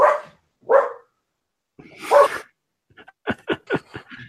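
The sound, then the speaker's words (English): Dogs bark loud: three separate rough barks spaced apart, then a quick run of five or six sharper, higher yips in a burst. No one speaks. “And with the dogs.”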